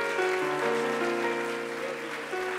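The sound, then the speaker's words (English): An audience at FAC church in Cincinnati claps steadily in praise to God, a dense, even patter of many hands lasting the whole moment, with sustained organ-like chords held underneath and no one speaking. “Let's give God a great hand praise”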